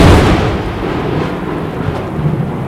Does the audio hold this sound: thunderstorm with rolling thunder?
yes